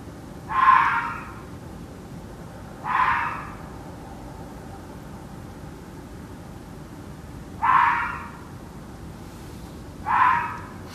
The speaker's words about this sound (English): Yeah, it's a barking sound, all right. Do you know what it is? It is a fox. And I can confirm it's a fox, because that was the sound I heard just after 4 a.m. the other morning outside my door.